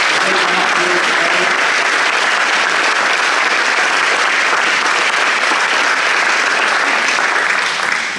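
An audience claps steadily for a group of women being invited up onto the stage, a dense, even wash of applause that holds strong for about eight seconds before starting to taper at the very end.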